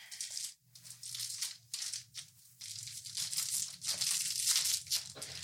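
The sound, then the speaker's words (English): A Lemonhead lollipop wrapper is being unwrapped: crisp, irregular crinkling and tearing of thin plastic in bursts for several seconds, with a low steady hum underneath and no talking. “I wanted to try this the whole episode, but I was like... What is it? It's the lemon head sucker.”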